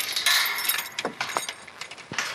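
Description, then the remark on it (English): Dry, papery rustling and crinkling of paper daisy flowers, an Australian native, being handled, a steady run of crisp little crackles with a few sharper snaps, no voices. “I've got paper daisies, so they're the Australian native. If you can hear, they sound like paper”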